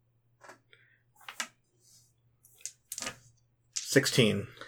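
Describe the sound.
Dice clatter and tumble across a hard surface in several short, sharp bursts of clicking, followed by a louder rattle as a voice comes in at the end, over a faint steady hum.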